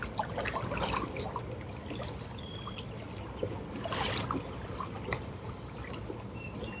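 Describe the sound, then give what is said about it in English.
Water laps steadily in cooler weather, with soft splashing swells around the first and fourth seconds over a constant gentle wash. Nobody speaks. “So grateful for the birds in the water lapping.”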